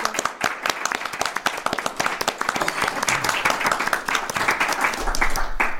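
An audience applauds steadily, many hands clapping in a dense, crackling patter that holds for several seconds and swells slightly louder toward the end, with no voices over it.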